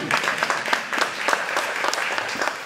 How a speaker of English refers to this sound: So you see, technical team. Please, let's clap for technical team.